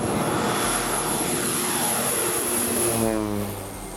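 A small propeller airplane engine, of a plane flown in Indonesia, drones loudly and steadily, its pitch shifting slightly as it revs before easing off toward the end.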